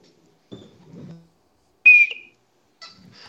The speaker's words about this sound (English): did you bring your crime whistle?